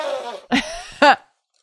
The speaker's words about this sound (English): It just feels uncomfortable and I like everything is tickling and I got to make some kind of gross noise. Hang on. I have to sniff.